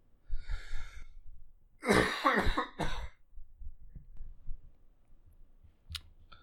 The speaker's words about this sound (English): So I don't know how much I can talk with coughing too much